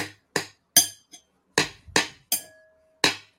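The Queen clinks a spoon against her cup of tea about seven times in a brisk, slightly uneven rhythm. The bright, sharp taps sometimes leave a short ringing tone, and there is no talking.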